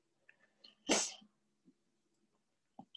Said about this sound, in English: I'm sorry if the sniffing grosses you out.